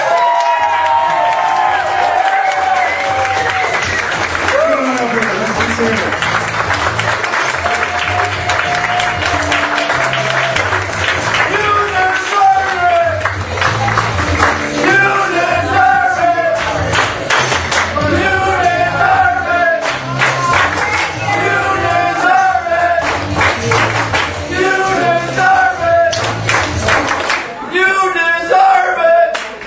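A large crowd applauds and cheers loudly and without a break, with whoops and shouted yells rising above the dense, steady clapping throughout.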